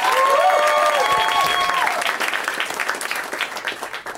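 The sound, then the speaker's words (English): A live show audience applauds itself loudly, a dense wash of clapping with a few whistles early on, tapering slightly toward the end. “One more round of applause for your damn selves for being here and great.”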